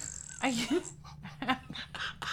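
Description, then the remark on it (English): Someone makes fart noises with their mouth, a few short buzzy, sputtering bursts with wavering voiced pitch, moderately loud over a faint low hum. “Did you seriously just make fart noises?”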